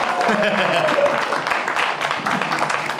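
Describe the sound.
A crowd cheers and applauds steadily for a few seconds to bring the third guest, Guy Branum, out on stage at a show in Brea, a dense wash of clapping and whooping voices that stays loud throughout.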